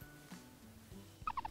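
A guinea pig lets out three or four quick, high-pitched squeaks in a short burst, preceded by a moment of quiet low rumbling, with no talking.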